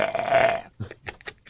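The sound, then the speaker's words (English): A loud, drawn-out burp after chugging a lot of water, with a gravelly, voiced rumble lasting over half a second, then fading into a few faint, short vocal sounds. “I'm like about to have a heartfelt talk, and there's in the background.”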